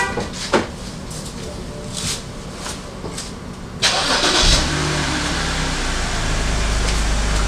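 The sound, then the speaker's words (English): A car engine cranks and catches, then settles into a steady, low rumbling idle, preceded by a few soft clicks and rustles inside the cabin. “Turn on the car.”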